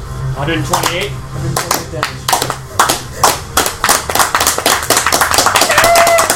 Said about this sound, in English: Brandis does 46, 45, and 37 damage. Slow clap.